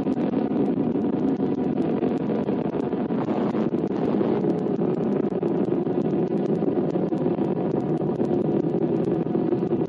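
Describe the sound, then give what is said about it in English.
Titan II rocket engines roar at launch in a steady, unbroken rumble, a dense low-pitched wall of noise at the same loudness throughout, no voices; its two motors give 430,000 pounds of thrust, carrying astronauts Lovell and Aldrin, the sound carried across the NBC News Center by a breeze from the Atlantic Ocean. “We might add that our microphone is not capable of picking up the fullness of this rocket's teeth-shattering roar, but we'll listen for a moment.”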